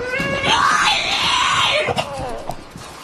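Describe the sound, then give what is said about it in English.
A French bulldog, locked outside a gate and wanting back into the yard, lets out a loud, drawn-out screaming howl that rises and wavers in pitch for about two seconds, then breaks into a couple of short, sharp yelps. “It is a French bulldog.”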